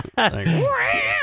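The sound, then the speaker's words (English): A person imitates a cat's meow with a drawn-out, rising-and-falling vocal cry, loud, lasting just over a second. “I do the meow all the time. Meow, meow, meow, meow.”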